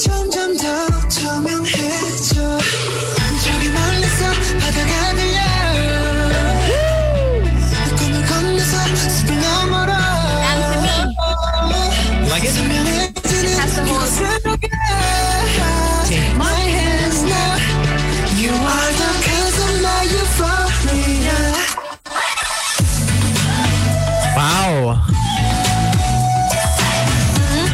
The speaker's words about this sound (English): This chorus is banging, man.